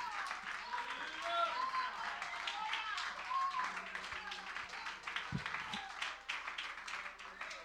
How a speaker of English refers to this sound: Somebody clap unto the Lord and give him some praise.